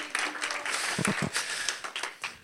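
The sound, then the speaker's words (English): An audience claps their hands unto the Lord in thanks, a dense, steady burst of applause, many overlapping claps blending into a broad, even roar, with a few low voices murmuring underneath. “Would you clap your hands unto the Lord and thank him for what he's done for you?”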